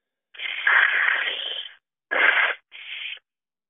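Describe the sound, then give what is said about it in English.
A person blows their nose: one long, breathy honk followed by two shorter, rougher blasts, all without any talking. “I just had to blow my nose there, sorry.”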